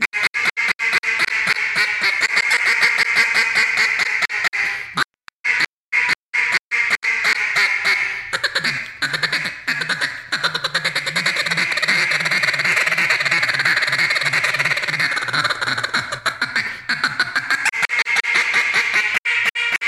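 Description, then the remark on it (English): A double reed duck call quacks in rapid, raspy bursts, loud and continuous, with a brief choppy stretch of short quacks and pauses partway through before the steady calling resumes. “Which Duck Call Do I Choose”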